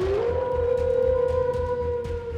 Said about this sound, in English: What the hell? Wolves.